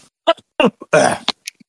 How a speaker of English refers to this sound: Sorry, I'm still here. I'm just trying to not cough my lungs up on air.